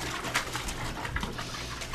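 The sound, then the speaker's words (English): Water bubbles and sloshes steadily for two seconds, a continuous watery rush with brief gurgling bursts popping through at irregular moments, fairly soft overall and with no voices. “Bubbles away!”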